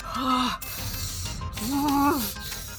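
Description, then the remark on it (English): A voice imitates heavy panting, with two long, ragged, voiced breaths in a row, loud, one rising and one falling in pitch, with nothing else around them. “Hudson's holding onto his longsword, like, trying to calm himself down. He's breathing very heavy, like...”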